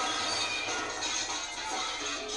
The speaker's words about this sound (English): And he was there. He was smashing up the greenhouses.